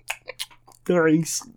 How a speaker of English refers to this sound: And then you hear, go back to typing.